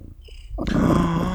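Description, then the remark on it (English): A huge male cat purrs loudly, a thick rumbling drone that swells in abruptly after a quiet, faintly whistling start and then holds steady to the end, with no talking. “Oh, there's a lot of bloody purring from that cat.”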